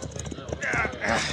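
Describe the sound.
Horse hooves clip-clop in a quick, steady rhythm as riders arrive at the top of a grade by a railway line, with a voice or brighter tonal sounds rising over the hoofbeats in the second half.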